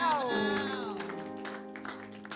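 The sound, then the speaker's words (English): Scattered crowd clapping for the Lord Jesus during a sermon, sharp irregular claps building under a sustained, droning tone of voices or music. Several people clap together at moderate volume, and no words are spoken. “Clap for the Lord Jesus.”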